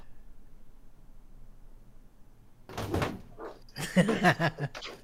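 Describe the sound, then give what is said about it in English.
A few seconds of quiet room hum, then a door is opened to let a cat in: a short clunk of the latch followed by a louder burst of rattling and scraping as it swings. “I'm going to let my cat in.”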